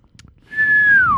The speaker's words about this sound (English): Don't whistle directly into the microphone.